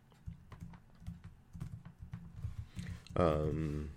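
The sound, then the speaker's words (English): Quick, uneven clicks of typing on a computer keyboard tap away for several seconds, with a low voice murmuring underneath and a louder voice breaking in at the end. “You can tell I'm typing.”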